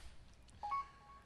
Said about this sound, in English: And, okay, I apologize for those beeps. I think I got rid of them. I think.